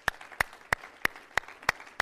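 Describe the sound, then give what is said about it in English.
An audience claps their hands in praise to the Lord in steady unison, sharp hand claps landing on an even beat about three times per second, moderately loud with no voices. “Clap your hands to the Lord and some praise and thanksgiving today.”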